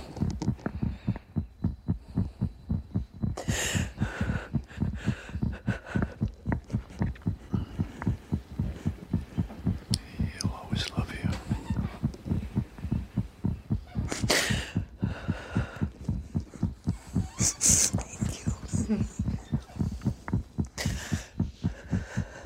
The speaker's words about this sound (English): Her eyes fill with tears as the two bring their heads together while she listens to her son's heartbeat.